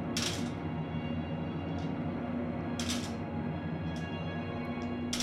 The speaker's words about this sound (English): Zach rolled the dice four times and then didn't say anything.